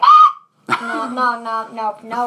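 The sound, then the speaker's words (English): A person imitates a loon call with their voice: a brief high, whistly hoot, a short pause, then a longer wavering, sustained wail that breaks into several warbling segments. “What's your best impression of a loon?”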